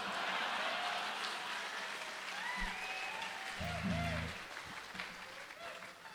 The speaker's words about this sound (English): An enthusiastic smattering of applause there.